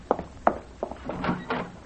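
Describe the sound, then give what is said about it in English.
A door opens: a few sharp wooden knocks and clunks, then a longer scraping, rattling sweep as it swings. No one speaks. “the door.”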